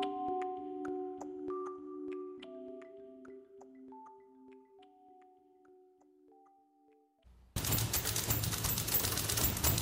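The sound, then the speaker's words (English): Soft sustained musical tones with light ticking give way to a loud, dense clatter of many typewriters striking keys together in a rapid, driving rhythm, an orchestra of typewriters from the soundtrack of the documentary film California Typewriter. No one speaks. “That's an orchestra of typewriters, part of the soundtrack of the new documentary film, California Typewriter, named for a repair shop in Berkeley.”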